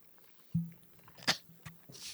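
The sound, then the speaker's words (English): A person chews a Jell-O shot, with a few crisp crunches and soft mouth noises at an uneven pace, one sharp crunch standing out midway, with no talking. “I'm still chewing.”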